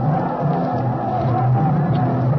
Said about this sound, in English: Look at them, Peachy! Right down on their blooming knees and yelling their fool heads off.